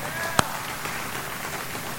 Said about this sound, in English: In fact, last Sunday, we had 9 people take that next step of baptism. Let's give them up for a round of applause for those 9 people.